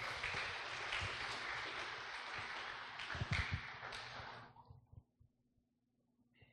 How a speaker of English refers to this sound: How about giving our presenters tonight a big round of applause, please?